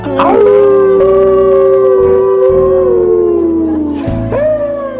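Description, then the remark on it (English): A Brazilian deaf, mute trans woman sings a long, strained, off-key power-ballad note loudly, her voice wavering and sliding in pitch like a howl, then breaking into a second rising wail. “Brazilian deaf mute trans woman sings …. ….”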